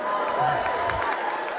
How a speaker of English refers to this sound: I like how some of you are clapping.